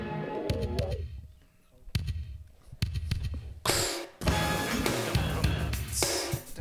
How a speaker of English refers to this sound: God, she just slams you in the face. Big drums. It's just multiple hammers. Yeah. I always visualize someone jumping off the stairs hitting a drum. Okay, yeah. Imagine caveman clubs.